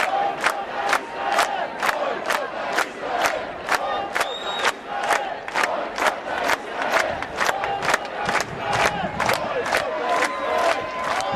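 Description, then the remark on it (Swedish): A large crowd chants a time-honoured slogan in unison at a 2010 tribute demonstration for the Ship to Gaza activists on Sergels torg in Stockholm, cheering Mattias Gardell on the podium; loud rhythmic shouts repeat at a steady pulse about twice per second, with a dense roar of voices filling the gaps between beats. “Under hyllningsdemonstrationen till hjältarna från Ship to Gaza på Sergels torg i Stockholm strax efter incidenten 2010 syns Mattias Gardell på podiet mottagandes folkets jubel i form av den tidsbeprövade ramsan.”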